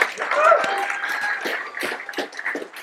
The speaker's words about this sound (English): If you will, give him another round of applause.